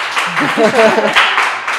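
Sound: audience clapping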